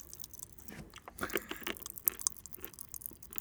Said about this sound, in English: Oh, very extreme. Oh my god. That's like the most extreme popping candy I've had. It's cola. Wow. It's cola with sweets.